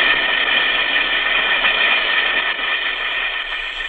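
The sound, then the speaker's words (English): An Alka-Seltzer tablet fizzes in water, a steady, dense hiss of crackling bubbles that holds at an even, fairly loud level for four seconds, with no voices. “Listen to it fizz.”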